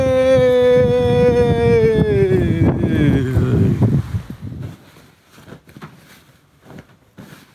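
On a windy day, loud wind buffets a microphone with a heavy low rumble and a falling droning tone for about four seconds, then settles into quieter, uneven gusts and faint rustling.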